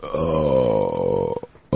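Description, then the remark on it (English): A single long, loud burp after eating a meal rumbles, deep and drawn out for over a second before breaking off, followed by a brief abrupt noise at the very end. “You know, in some Asian cultures, a big burp after a meal means you did it right.”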